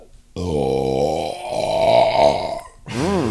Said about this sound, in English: Excuse me. Sorry, man. Hey, when you gotta go, you gotta go. Tell me how you really feel. Tell me how you really burp.